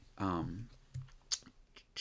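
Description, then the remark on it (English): A few sharp, sparse clicks of computer keys being pressed, spaced irregularly, following a brief murmured voice at the start. “Let me see my, get to the right keys here.”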